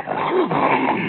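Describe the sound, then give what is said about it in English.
A dog growls steadily at a stranger on a dark night for about a second, a sustained rumble with a few rising and falling tones and no voices over it. “Most dogs like me. Your dog's the exception.”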